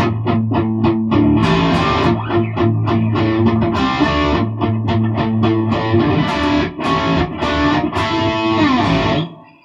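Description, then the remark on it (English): A distorted electric guitar chugs out a simple, steady rock rhythm with punchy repeated chords, loud, playing alone without any voices. “So there's a fairly simple rock rhythm.”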